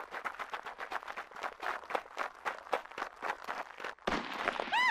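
Rapid, close gunfire crackles in a long steady burst of shots, then a sharp louder bang is followed by a rising, whining tone.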